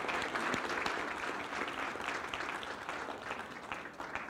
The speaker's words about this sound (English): So if you could do me a favor and just show him some appreciation and give him a round of applause for being with us this summer.